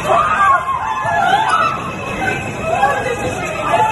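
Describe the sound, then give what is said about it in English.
A panicked crowd flees after a shooting in a Brooklyn subway train car in New York: loud, continuous overlapping shouts and high, wavering screams rise and fall over a dense babble of frightened voices, with no pause throughout. “A video has surfaced of a crowd desperately trying to get away from the area.”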